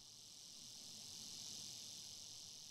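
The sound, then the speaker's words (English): A steady outdoor chorus of crickets and cicadas at the small cemetery behind Live Oak Baptist Church in Mount Vernon, Georgia, a continuous high-pitched buzzing drone that holds evenly throughout, fairly soft, with no voices. “And as we walk to the gravesite of his parents, Dover and Bessie Carter, a chorus of crickets and cicadas greet us.”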